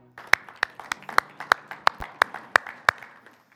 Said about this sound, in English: We don't applaud because we're fans of the worship team, and we don't applaud because we're trying to blow up their heads. Our applause is simply gratitude.